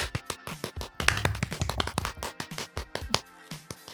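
Hands clap in a quick, uneven flurry, dozens of sharp slaps over a few seconds at moderate loudness, with no voices over them.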